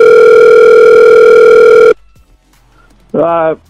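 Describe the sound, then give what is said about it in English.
A loud, steady telephone tone rings out over the line for about two seconds, then cuts to near silence before a short burst of a man's voice answering the call. “So we're going to give him a call.”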